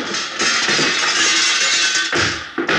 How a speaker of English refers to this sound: Grab one of those chairs and throw it through the glass. Okay, I guess you're right. Here goes.